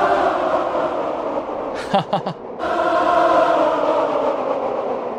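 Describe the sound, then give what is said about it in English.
Dense, sustained choir vocals with the delay effect turned up wash together in a thick layered drone, with a brief dip midway where repeating echoes stutter and trail off before the full wall of voices swells back in. “Turn the delay up so you can hear that.”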